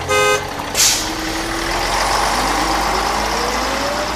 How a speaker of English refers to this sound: This hover bus is heading to Liskov Intercortex Junction. All aboard! Up on, everybody! Hover bus departing. Next stop, Lamar Spread Spectrum Frequency Transmitter 2,292,387.